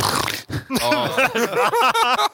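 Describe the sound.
A voice mimics a harsh, aggressive snore: a rough, noisy snort followed by a loud string of gruff, throaty grunts that rise and fall in pitch, with no words.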